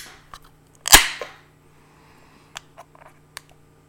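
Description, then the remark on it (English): A beer can cracks open with one sharp pop and a brief hiss of fizz that fades within half a second, followed by a few faint, scattered clicks. No one speaks. “So, can crackers out there, here it is.”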